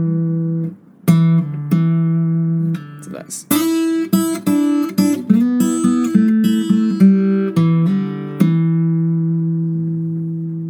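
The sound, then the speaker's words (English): A bright acoustic guitar lick in the style of Robert Johnson, played on the open third string, then the fourth string at fret 2 with a pull-off and hammer-on: a quick run of plucked notes in an uneven rhythm, ending on a long ringing chord, after a brief spoken word. “And then on the fourth string, fret 2, pull off, hammer on.”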